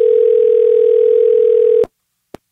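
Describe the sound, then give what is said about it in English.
A steady, loud telephone dial tone of an outgoing call to a friend hums for nearly two seconds, then cuts off with a click, followed by a brief silence and one more faint click. “So now it's time for a segment of the podcast called Phone a Friend, where we do just that.”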